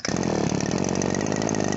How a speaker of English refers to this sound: Hold on, I'm gonna try to use this lawnmower.